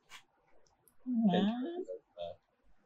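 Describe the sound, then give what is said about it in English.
A person's voice mimics the dog Than yipping frantically with excitement: a short sharp yelp, then a longer whiny, wavering cry, followed by another quick yip, fairly loud. “Than starts yipping frantically, to which I respond, Than wants to know if it's any doggy treats.”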